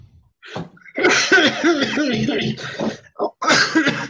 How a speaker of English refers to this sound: I haven't got coronavirus, it's just a coughing fit.